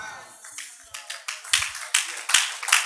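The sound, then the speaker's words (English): An audience breaks into clapping, starting scattered and building into a steady, fuller applause with sharp, bright claps standing out over the crowd. “I didn't ask you to clap, but if you clap, can you clap as if your applause is not on trials?”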